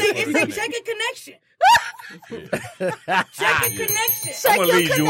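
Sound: bell being rung repeatedly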